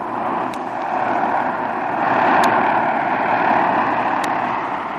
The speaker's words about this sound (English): As Jim's plane glides to a landing, two men seated on the running board of an automobile scrutinize the approaching plane closely and then slowly get to their feet.